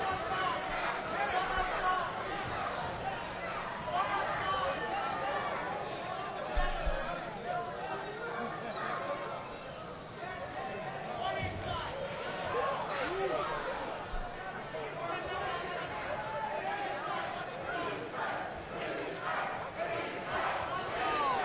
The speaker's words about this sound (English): Crowd chanting Sweetbread.